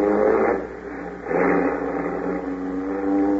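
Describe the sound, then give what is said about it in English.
A car engine revs up loudly, surges again after a moment, then settles into a steady hum as the vehicle pulls away. No voices are heard. “We'll drive straight to Cape Town and take the first boat back to California.”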